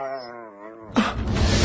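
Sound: dog whimpering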